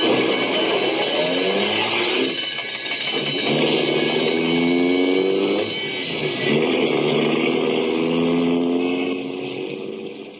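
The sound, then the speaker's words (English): A loud old ambulance engine revs hard and accelerates away on a call, its pitch climbing repeatedly as it shifts through gears, with steady road and mechanical noise throughout and no voices. “I've been driving this old baby for 8 rotten years. An ambulance, Mac, is a sacred thing.”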